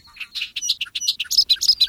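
A bobolink's bubbling song pours out in a rapid jumble of high, tinkling notes and metallic chirps, clear with no voices, running continuously for about two seconds.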